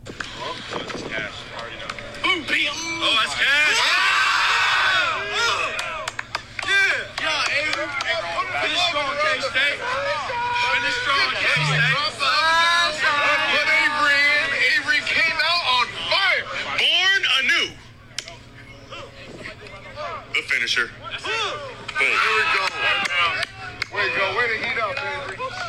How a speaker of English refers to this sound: You can hear it where he's tossing into the end zone and they go crazy, all the other campers and coaches that are involved.